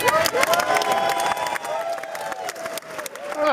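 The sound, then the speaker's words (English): A large crowd in a chamber claps steadily as the President of the United States is announced, while cheers and shouted voices rise above the applause, a dense, loud, sustained roar that holds for the whole stretch without a break. “Ooh, it's clap.”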